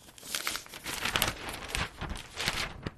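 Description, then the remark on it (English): A newspaper page rustles and crinkles as it's turned, a steady papery crackle lasting a few seconds with small swells in loudness and no voices. “Let's turn the page now to a story out of Melbourne on a counterfeiting plant.”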